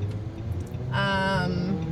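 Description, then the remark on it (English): Muffled, steady low rumble of a car interior, with a short bright harmonic tone ringing out partway through before fading back into the enclosed hum. “Hopefully, it'll be a little bit less echoey, though. Yeah, true. Because we're in a car.”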